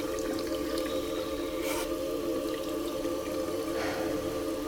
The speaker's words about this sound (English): Stumble into the bathroom. I splash my face.